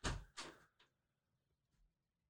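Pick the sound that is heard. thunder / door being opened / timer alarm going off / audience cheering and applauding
door being opened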